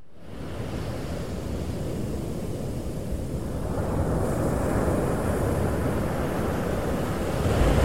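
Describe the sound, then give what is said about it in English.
Steady roar of ocean surf washing onto a beach, a broad continuous rush of noise that swells slightly louder toward the end, with no voices. “Let's go to the beach.”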